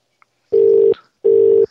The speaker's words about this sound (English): It's that beautiful double ring. We're not accustomed to that here, but